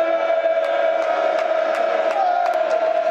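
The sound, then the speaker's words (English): A loud, steady roar from a large stadium crowd at a match between Lions and Leicester, around 68 minutes in, with sustained chanting tones and scattered sharp claps or shouts cutting through the din. “The crowd is desperate for something.”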